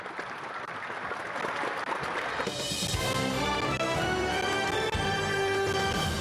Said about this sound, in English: I'll get the game show congratulation noises going. Give me a second. Here we go.